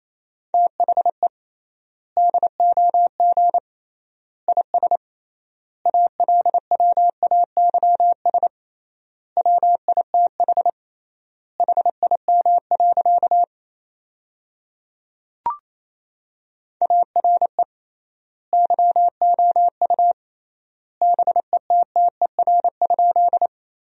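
Morse code practice sent at 28 words per minute with triple word spacing, sentences built from the top 400 words: a steady mid-pitched tone keyed into rapid dots and dashes, grouped in bursts separated by short gaps, with a single soft click partway through.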